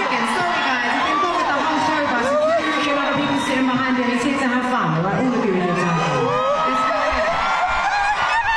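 A large crowd cheers and whoops continuously, with many overlapping high-pitched shouts and screams rising and falling, loud and close, sustained for the whole stretch without letting up.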